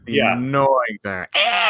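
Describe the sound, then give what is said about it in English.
A person vocally imitates a cheesy movie sound effect of killer birds: three loud squawking cries with swooping, wavering pitch, delivered in quick succession with brief gaps. “And then the terrible sound effects.”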